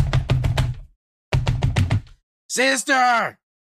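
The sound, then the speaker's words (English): Heavy banging on a boarded-up door in two quick bursts of about five loud, thudding blows each, followed by a short, strained vocal cry. “he stumbles over to the to the boarded up doorway and begins banging on the door.”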